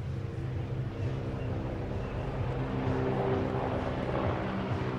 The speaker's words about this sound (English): Our flyover.